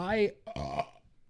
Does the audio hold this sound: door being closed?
no